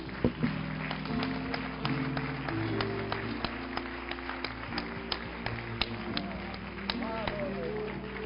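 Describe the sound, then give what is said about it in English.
An audience gives a hand clap of praise to Jesus, a steady stream of sharp hand claps over sustained organ-like tones and murmuring voices, lasting several seconds. “Let's give him a good hand clap of praise.”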